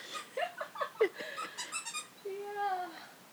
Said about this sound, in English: Yeah, so the dog's trying to kill her squeaky toy. She'll probably succeed. She's got 900 of them.